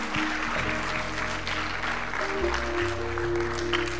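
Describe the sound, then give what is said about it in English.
A church audience at Pineview applauds steadily as the bishop comes up to preach, a dense wash of many hands clapping with no pauses, while low sustained organ or keyboard chords hold underneath throughout. “Give the Lord a hand clap as he comes today.”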